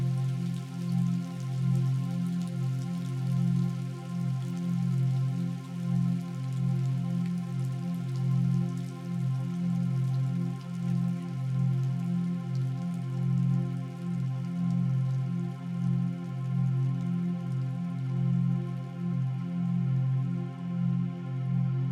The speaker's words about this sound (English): Immersed in the sights, the sounds, and the smells of the mountain and the rain constantly flowing.